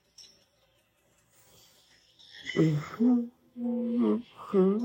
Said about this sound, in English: Sorry, I'm yawning. I'm tired. It's 2 in the morning where I am.